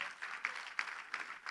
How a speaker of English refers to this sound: If you're one of the men here that helped us on one of the nights or mornings park, will you just stand up so we can give you a round of applause? Come on, let's thank these guys.